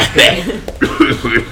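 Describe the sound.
A few rough, voiced coughs in quick succession, fairly loud, with short breathy gaps between the bursts.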